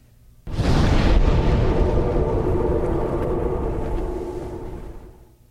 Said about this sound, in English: Dark Souls traveling by bonfire? Not quite. I need to hear it again. Well, you know what? We're going to count that as close. It's the bonfire sound. So I think it's when you sit down. Oh, sitting at a bonfire.